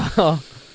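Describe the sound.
A voice imitates a grandfather's loud breathing through his nose: one short, forceful snorting puff, rough and hissy, with a brief voiced rumble in the middle, fading out quickly.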